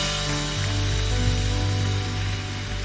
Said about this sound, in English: If you believe it, give God a hand clap right now. Come on, give him a good hand clap.